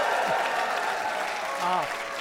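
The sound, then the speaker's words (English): An audience applauds in a dense, steady wash of clapping that holds at an even level throughout, with a few voices briefly audible over it. “Still by applause, how many people have never heard of the Dead Authors Podcast and have no idea what they're about to see?”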